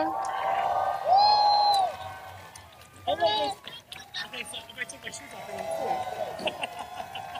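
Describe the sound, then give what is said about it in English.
A live crowd at a drag show reunion recap cheers and applauds steadily as season 11 queen Raja O'Hara is introduced, with a loud whoop near the start and scattered shouts and whistles rising over the clapping. “Cheers and applause.”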